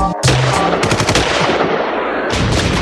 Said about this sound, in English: And it's one, cue the gunshots.